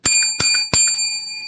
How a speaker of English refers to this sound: someone was knocking at her door. Someone was ringing the bell.